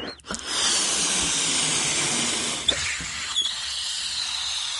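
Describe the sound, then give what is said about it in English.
A steady, broad hiss of air rushing out of a deflating balloon attached over a cardboard tube, holding a CD aloft above a tabletop, fairly even for several seconds, with a couple of brief knocks and squeaks partway through and no talking. “The CD was held aloft above the tabletop by the balloon for the time you heard it going down, and it was just literally floating around, and you could actually knock it around.”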